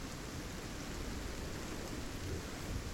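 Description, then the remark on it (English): Heavy rain pours steadily while deep, rolling thunder rumbles low underneath, a continuous dense wash of storm noise with no voices. “With rolling thunder and cracking of lightning, the clouds gather together and continue to shed rain down on the plains of Moitura.”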